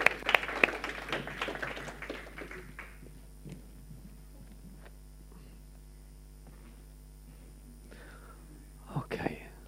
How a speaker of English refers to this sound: These guys do a fabulous job, and they do it for you, and they do it for love of God. I want you to give them a clap again. I know they haven't spoken yet. They are brilliant.